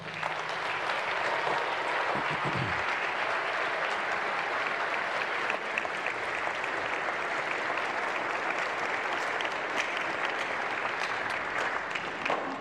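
An audience claps steadily for these men for over twelve seconds, a dense, even wash of applause at a constant loud level with no voices breaking through.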